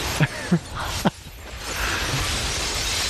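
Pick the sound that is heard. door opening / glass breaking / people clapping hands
glass breaking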